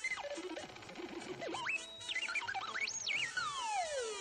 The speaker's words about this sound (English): Now, that's called static. There's something progress can't improve on.